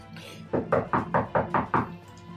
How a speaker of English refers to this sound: And you hear a knock at the door.